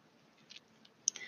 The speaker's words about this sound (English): I am shuffling the Rider Waite Tarot deck. I cannot guarantee that you will hear me shuffling the whole duration of this reading, but based off of faith, we will go from here.